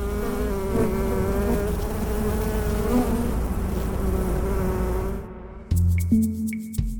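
honeybee colony buzzing

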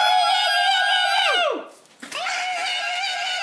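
people screaming together

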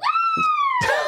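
screaming sound effect

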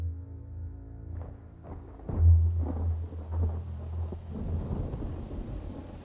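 thunder

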